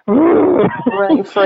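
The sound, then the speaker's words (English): A person loudly imitates with their voice the roaring of a fire in a little office fireplace in the Bay Area, California, on a chilly day: a sustained, rumbling roar lasting just over a second with a brief dip near the end. “I have a little fireplace in my office, and it was so loud that I realized I couldn't do your coaching call in there because it just sounded like this roaring.”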